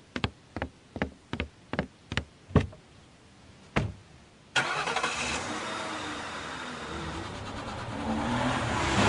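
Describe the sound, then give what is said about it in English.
A small car engine, a little Urkel car of the kind you get into from the front, cranks with a series of sharp, rhythmic clicks, pauses, then catches and roars into a steady running drone as it drives off. “I swear he drives off in that little Urkel car.”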